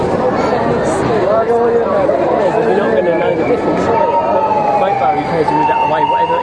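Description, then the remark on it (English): An emergency motorbike siren wails steadily under dense crowd chatter, most noticeable in the second half as its tone holds and slowly shifts, moderately loud amid the busy street voices. “I didn't know the bikes could do that, actually. I knew fire engines and ambulances and that do it, but”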